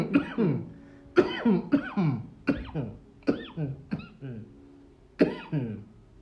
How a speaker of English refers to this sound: I'm not sure I've ever started any episode without coughing in the first 20 seconds. It's like my sign. It's like light up, then you cough, then we begin.